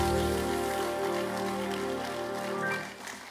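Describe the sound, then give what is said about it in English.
A church audience claps for the Lord during a sermon, steadily in a dense, crackling wash, over sustained organ or keyboard chords; the applause thins out and fades in the last second. “Somebody give the Lord a clap in the house.”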